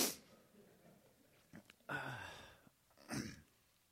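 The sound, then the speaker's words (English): Someone blows their nose into a microphone strapped to their face: two loud, harsh, breathy blasts with a short pause between them, preceded by a brief sniff. No one speaks. “You shouldn't have a microphone strapped to your face when you blow your nose.”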